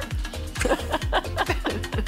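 A dog barks in a quick, steady run of about five sharp, evenly spaced woofs, each with a low, falling tone, heard with no talking over it.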